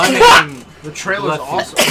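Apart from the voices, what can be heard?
sneeze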